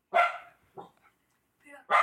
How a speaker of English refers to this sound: Is that a dog?